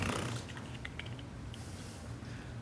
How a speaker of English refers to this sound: Revelation 17. Still hear lots of good rustling.